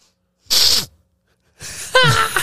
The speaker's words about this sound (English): I can't sniffle. No, you can't sniffle. I cannot sniffle near these microphones. If you need to sniffle, you have to hit the little red button.